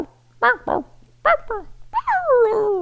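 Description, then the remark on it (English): A person imitates the dog barking heard when Roman Reigns' entrance music hits on SmackDown: five short, fairly loud barks in an uneven rhythm, ending in a longer, falling whine, with a faint low hum beneath. “So the music hits, but then you start hearing barking. It's rah, rah.”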